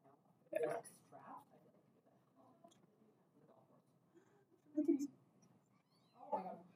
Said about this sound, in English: Loud kitties at the golf course.